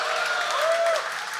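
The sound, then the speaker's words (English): An audience claps and cheers for Ben Falk and Sachin Gupta in a dense, steady wash of applause, with a brief high whistle-like cheer rising above it partway through. “if we're going to give a big cheer to Ben Falk, a big cheer for Sachin Gupta as well.”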